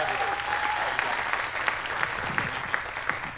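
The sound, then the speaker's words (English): A crowd applauds steadily to welcome a family home, dense overlapping hand claps forming a continuous wash, with a few sharper individual claps popping out at a regular pace toward the end. “Give a big hand clap for our family.”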